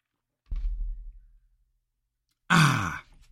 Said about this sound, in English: Hang on a sec. I'm going to take a sip here.